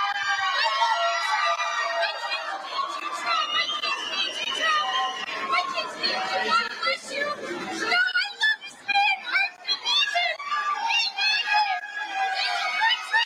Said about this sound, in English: This is the booing.